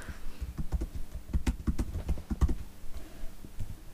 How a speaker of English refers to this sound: You can hear all the typing on. Every time I tap on the laptop, you hear it, the mic.